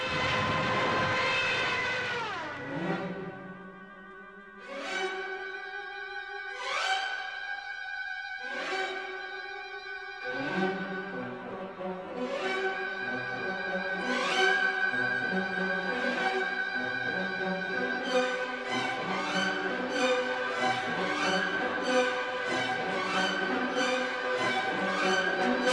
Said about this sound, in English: It was the sound of the ride of the Valkyries. It was the sound of the German Stuka dive bomber.